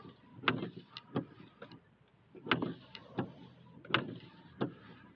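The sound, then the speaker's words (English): Car windshield wipers sweep back and forth in a steady rhythm, each pass ending in a soft thump, over a low, constant rumble, during a car ride at about 5 a.m. No one speaks. “Stupid windshield wipers.”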